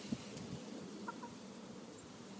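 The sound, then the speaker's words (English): Quiet chickens clucking in a garden, a couple of short soft calls over a steady low outdoor hum, with no one talking. “It is indeed chickens.”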